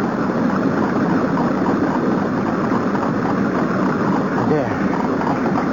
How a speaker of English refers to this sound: Such a noise won't hurt you, Felipe. It's just the sound of the water.